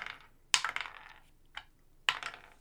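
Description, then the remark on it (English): A die, rolled for attack damage during a game, clatters across a hard table in two bursts, each a sharp click followed by a quick run of rattling bounces that tick and fade, with no voices. “Oops, wrong die.”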